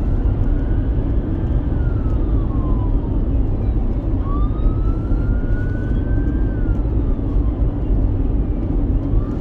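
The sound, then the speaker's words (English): Emergency vehicle sirens wail in slow rising and falling sweeps, fairly faint, over a constant loud rumble of traffic noise. No one speaks. “Sirens, I don't know where they're coming from.”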